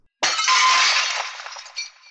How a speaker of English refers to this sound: Just then, Mercy St. Clair crashes through the window, knocking the killer off balance.